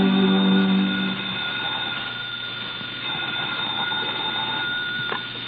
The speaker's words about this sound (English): We find her at her desk as the phone rings.